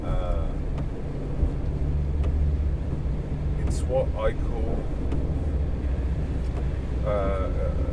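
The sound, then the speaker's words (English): Wind and rain buffet a car in a steady, heavy roar that fills the cabin, with wipers working underneath, while a man speaks briefly over the din. “I mean, these wipers are going like mad because of the rain. The wind is howling up against the car.”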